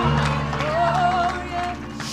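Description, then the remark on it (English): A church audience claps in praise to the Lord during a service, a steady wash of many hands over sustained organ-like musical tones and a held, wavering voice. “Let's give a hand clap of praise to the Lord right now.”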